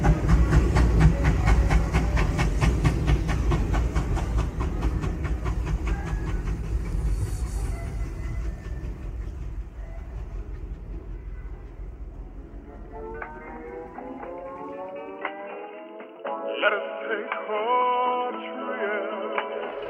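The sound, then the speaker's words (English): A train rolls along the rails with a heavy, steady rumble and repeated clickety-clack, fading after about twelve seconds as music with a melody takes over. “Thanks again for riding our tall black guy railway.”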